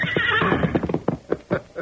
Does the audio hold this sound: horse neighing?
yes